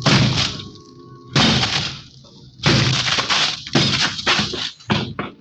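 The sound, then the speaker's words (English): A heavy barbell smashes through a thin door in a series of loud impacts, about four heavy crashes spaced roughly a second apart, each followed by splintering, breaking debris and a few smaller knocks trailing off as the door collapses over a desk. “Four smashes and three torn ligaments later, the thin door collapsed over the desk, blocking it.”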